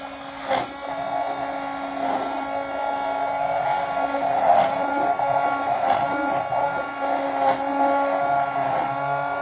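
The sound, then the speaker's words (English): A blender blends a drink with coconut oil in it, running continuously at high speed, a loud, steady buzzing motor whine with strong harmonics, broken by a few brief rattling surges as the contents churn. No one speaks. “You get to hear me blend my drink again.”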